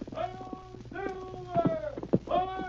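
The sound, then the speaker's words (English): Horse hooves clip-clop in a few uneven, hollow knocks, partly buried beneath a voice talking over them. “Come on, horse.”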